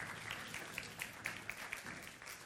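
A Spark Church audience applauds to welcome two speakers, a dense, steady wash of many hands clapping, bright sharp claps poking through at an even pace over a couple of seconds, fairly quiet overall.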